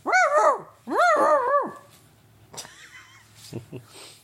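dog barking

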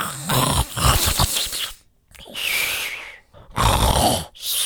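loud snoring

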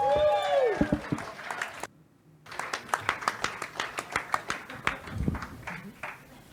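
audience applause and cheering

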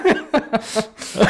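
person coughing

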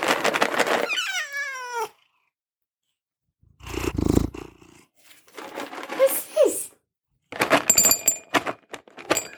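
cat purring

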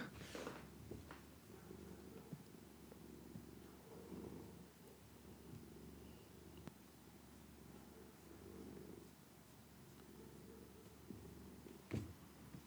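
cat purring

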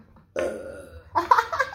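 burp

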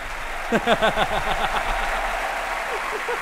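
crowd applause

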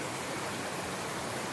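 flowing stream water

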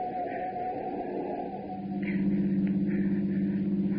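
car driving

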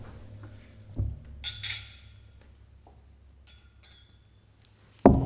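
glasses clinking

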